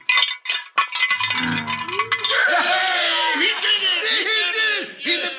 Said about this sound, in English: Quiet now. I'm going to rattle the frying pan.